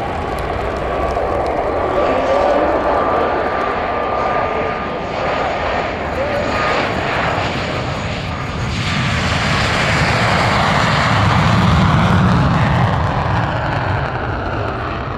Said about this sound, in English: Let me now light the burners on this jet and launch into my show with the guy who was the jet fuel behind Thunder Over Cedar Creek Lake Air Show this July.